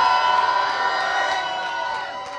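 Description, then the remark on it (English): An audience of many voices gives the Lord a loud shout, cheering together in a sustained, loud roar that holds steady for a couple of seconds and then tapers slightly, with no single voice standing out. “Can you give the Lord a loud shout in this room right now?”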